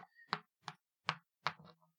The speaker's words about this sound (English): I will roll the die now. And it has come up with a 1.